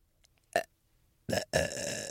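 Close, loud burping: a short croak, then a brief rough belch and a longer drawn-out one that trails off at the end, with no talking.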